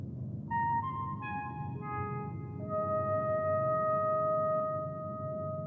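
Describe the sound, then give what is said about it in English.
Five sustained, pure tones enter one after another, each holding on and layering into a bright chord over a low rumbling background; the melodic signal sounds clear, with no talking. “Play the five tones.”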